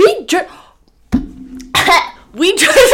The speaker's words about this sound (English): I felt like a cat. No. I was like coughing up a hairball.